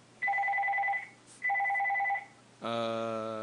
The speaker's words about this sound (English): I think you're getting a call. I'm not answering that. Someone else will, or no one will. Is it the house phone? Yes, that's the house phone.